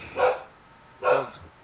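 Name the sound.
dog barking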